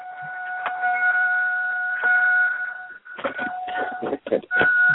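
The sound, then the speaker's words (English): A steady electronic car warning tone drones on almost without pause, while thuds, rustling and shuffling movement crowd in during the second half as someone gets in and out of the car. “I'm just laughing at someone getting, I guess, in and out of the car. I hear the beep in there.”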